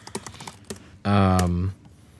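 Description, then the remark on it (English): Quick clicks on a computer keyboard tap out for about a second as someone pulls up notes, then a loud, sustained voiced sound briefly takes over before things fall quiet. “I want to say, let me pull up my computer and get some notes here.”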